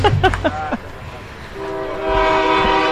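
The 4 o'clock train's horn blares during an afternoon softball game in a long, steady, multi-tone blast that swells louder partway through, over a low rumble of the passing train.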